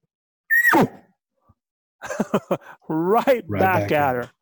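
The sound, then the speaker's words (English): A person voices one loud, abrupt imitation of a cow elk's bark, a sharp call that drops quickly in pitch. After a short pause, a man starts talking. “If you hear a cow bark at you like that and you're up in the trees, here's what I want you to do.”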